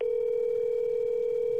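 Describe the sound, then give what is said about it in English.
A steady, unbroken outgoing telephone call tone hums at an even volume for the whole moment, clear, with no voices or other sounds around it. “No, I'm calling her.”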